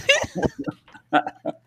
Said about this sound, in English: Stop the recording, I'm dying. I know I'm coughing.